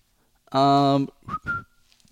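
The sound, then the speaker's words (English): A person whistles: a loud, sustained note of about half a second, followed by two shorter, breathier whistled notes, with no speech. “Did you hear that? The whistle?”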